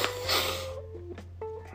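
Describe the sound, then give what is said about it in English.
A single strong, breathy sniff through the nose from a person with the sniffles, lasting under a second, followed by quieter faint snuffling and a low steady hum, with no talking. “Sorry for the sniffling. I got a little sniffles.”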